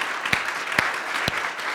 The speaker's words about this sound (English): So let's just give her a huge round of applause.